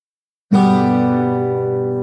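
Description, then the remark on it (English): After a brief silence, a single guitar chord, a G, is strummed once and left to ring, its bright, full tone sustaining steadily and fading only slightly. No one speaks. “This is a chord of G.”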